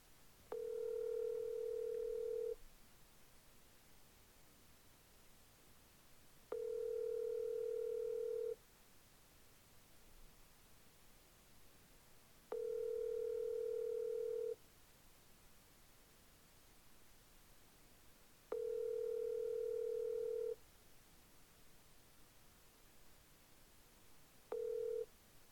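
An outgoing phone call to Garrett Soldano rings on the line: a steady mid-pitched ringback tone sounds in two-second bursts separated by about four seconds of quiet hiss, four full rings and the start of a fifth.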